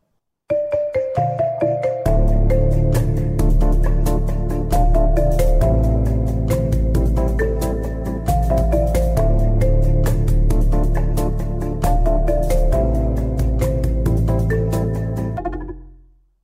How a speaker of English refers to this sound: popular songs from the past couple years, but they are all done as lullabies. So if you got little ones, you can use these songs.